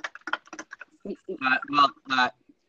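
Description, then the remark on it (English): A quick flurry of light clinks and taps, like a spoon stirring briskly in a glass of chocolate milk, followed by someone talking. “I'm not typing. I'm mixing my chocolate milk, sir.”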